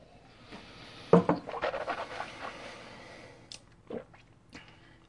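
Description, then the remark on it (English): Gulps as someone swallows a glass of whiskey in quick succession, followed by a few softer breaths and mouth sounds. No one speaks. “Yeah, you know, even taking a kind of a large gulp there at the end, no shudder, no hint, no alcohol that's making it kind of cringe a little bit.”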